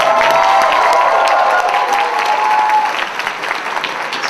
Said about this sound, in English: Applause for Rebecca Roach, the head of Otakon.